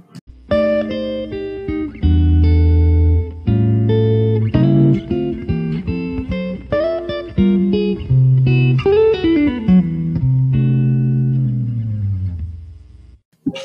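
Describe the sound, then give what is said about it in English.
A loud musical transition sting of distorted, effect-laden chords shifting steadily for about fourteen seconds, ending in a descending run that fades out. No one speaks. “So you guys are going to hear transition, and then we'll start off with the next question.”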